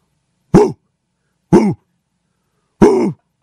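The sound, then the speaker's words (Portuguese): A person imitates a dog barking with three short, rough, cough-like barks, evenly spaced and fairly loud, with silence between them and no other talking. “Eu sou péssimo pra imitar latida de cachorro, você consegue?”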